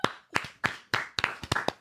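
A quick run of about ten sharp hand claps, fairly close and loud, in a slightly uneven rhythm that speeds up toward the end, with no talking.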